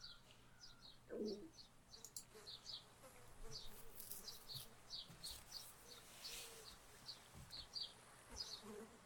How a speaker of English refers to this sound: Flies.